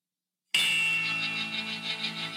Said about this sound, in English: I think I can even pull it up on my phone to... Let me see if I can find my ringtone. This was my ringtone every morning.